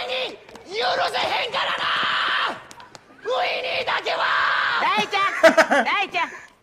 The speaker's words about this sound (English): He's screaming his face off. Scare the shit out of him.